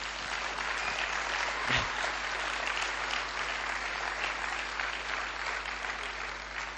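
An audience claps steadily throughout, a dense, even wash of many hands that stays fairly loud for several seconds with a brief swell near the start.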